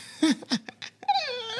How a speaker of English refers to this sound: Oh, God, doggy.